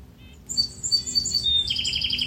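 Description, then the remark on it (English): Bright birdsong in the morning at sunrise by Lake Superior: rapid, high chirps and a fast repeated trill ring out clearly over a soft, steady low rumble of outdoor background noise, with no voices. “How sweet to be welcomed by birdsong.”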